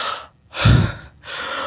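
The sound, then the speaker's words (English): A voice imitates a pregnant woman in South Sudan gasping for air: three ragged, breathy inhalations in a row, the middle one loudest with a throaty, rasping catch, with no talking. “So I turn her on her back, and I realize that she's gasping for air.”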